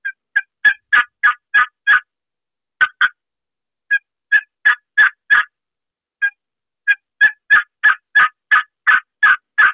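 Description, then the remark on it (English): A turkey call, run slowly at a proper turkey rhythm, yelps in three paced runs of sharp, evenly spaced notes, each run slightly accelerating, clear with short pauses between sequences and no talking. “Slow that call down to a proper turkey rhythm like this. This is the same call I just ran.”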